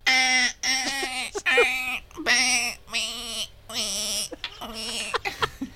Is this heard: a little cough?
no